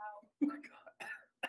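person coughing

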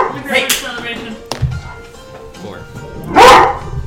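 dogs barking

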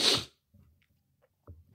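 sniffling

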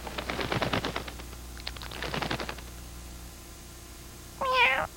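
cat meowing

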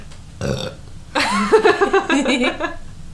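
loud burp

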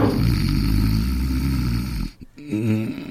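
man snoring loudly

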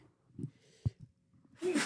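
sneeze

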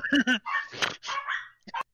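dogs barking

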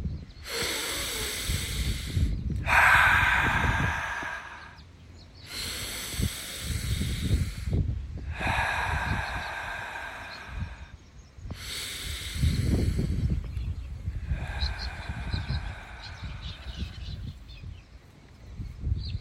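deep breathing

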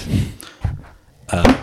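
microphone being dropped

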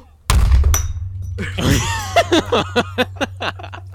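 glass shattering

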